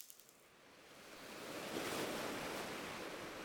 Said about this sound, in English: Cliff. Not a cliff. A waterfall. Yeah, waterfall. Leads to a lake.